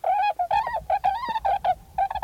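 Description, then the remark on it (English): Swans calling in a rapid, overlapping series of nasal, hooting honks, a dozen or so notes in quick succession, clear with no voices. “Swans Come Calling”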